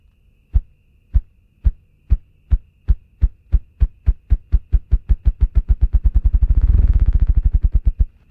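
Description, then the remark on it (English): A ruffed grouse drums with its wings: deep, muffled thumps start slow and evenly spaced, then speed up steadily into a rapid, rumbling whir before trailing off. No voices. “Body part, wings. Species, ruffed grouse.”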